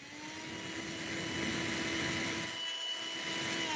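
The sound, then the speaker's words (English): A vacuum cleaner runs steadily, a loud, continuous whooshing roar with a thin high-pitched whine on top, holding even for a few seconds with no one speaking. “It's a vacuum cleaner because they suck.”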